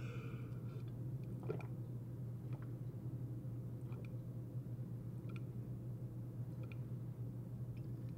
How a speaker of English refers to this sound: I get all these letters and people say, God, I love it when you drink water. That's like, I don't know what that's about, but shit, I'll drink water. I'm down with that. I wanna deliver what my people want. Here we go.